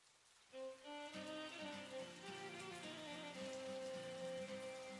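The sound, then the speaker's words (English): Steady rain patters and hisses outside throughout, with sustained, gentle melodic tones swelling in after a moment and continuing over the rainfall. No one speaks. “He noticed outside it was raining again.”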